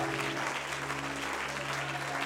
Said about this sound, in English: If you love your church, I want you to clap your hands and give Jesus praise for it. Amen.